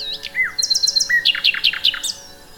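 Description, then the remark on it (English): A nightingale sings clearly, opening with a few varied whistles, then a rapid series of repeated bright notes and a final rising whistle, with no other sounds around it. “He grabs his clarinet, heads to urban parks and forests, and interacts with this most lauded of birds in human culture, the nightingale.”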